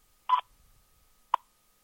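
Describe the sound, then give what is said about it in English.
Two electronic time-signal beeps from the U.S. Naval Observatory Master Clock, marking 4 hours, 1 minute exactly, Eastern Daylight Time, with no talking: a short, bright mid-pitched tone, then after about a second a much briefer, sharper pip at the same pitch. “U.S. Naval Observatory Master Clock at the tone, Eastern Daylight Time, 4 hours, 1 minute exactly.”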